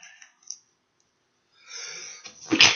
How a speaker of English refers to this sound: Gesundheit.